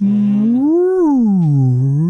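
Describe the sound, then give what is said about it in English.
Someone imitates a whale call with one long, loud, moaning hum that swoops up in pitch, sinks low, then starts climbing again, with no other voices or sounds. “You're going to have to practice on your whale calls,”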